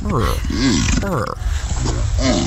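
Two alligators fighting on a golf course grunt and growl: a run of loud, deep, guttural, purring calls with rising and falling pitch, coming in rough bursts over a low rumbling background.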